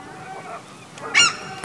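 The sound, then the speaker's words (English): A griffin bearing an Arenal brand under its wing, pecking at people and seemingly made of exposed wiring rather than feathers, lets out a single short, loud honking squawk, goose-like and nasal, rising suddenly out of a quiet murmuring background near the end. “Oh, that griffin is he still alive?”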